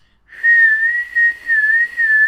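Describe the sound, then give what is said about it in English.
A person whistles a single sustained, wavering high note for about two seconds, rising and falling slightly in pitch to imitate the howl of strong storm wind against windows, fairly loud with no talking. “Yeah, thrown against the window and then mixed with super loud whistling sounds from the wind and yeah.”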